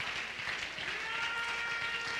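An audience at a worship service claps their hands unto the Lord in a dense, continuous wash of applause that holds steady for the whole stretch, with a faint tonal hum running underneath.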